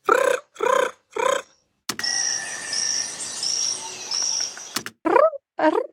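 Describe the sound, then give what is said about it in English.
A poison frog, Epipelobates bollengeri, with a reddish-brown back, calls in short, buzzy chirps: three evenly spaced notes, then a steady high-pitched drone, then two more chirps that slide downward in pitch, moderately loud and with no talking. “Okay, that's a poison frog, you said? So it's the scientific name is Epipelobates bollengeri.”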